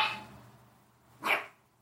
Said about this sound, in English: there is Piper the Wiener Dude barking at us